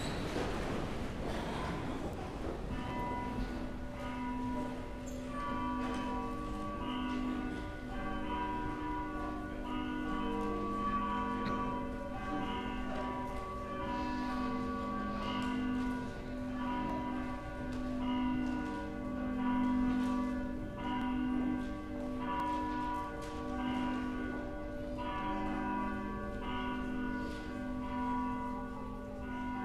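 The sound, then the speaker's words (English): Church bells ring continuously in a full, overlapping peal to call people to worship at the start of a church service, their tones layering and sustaining throughout at a steady, moderately loud level with no voices present. “Please stand, the bells will call us to worship.”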